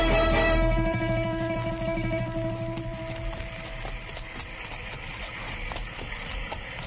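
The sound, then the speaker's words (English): Horse hooves clip-clop in a steady, repeated rhythm out on the frontier, set against a constant low droning background. No one speaks. “Come on, Chester, let's find our horses.”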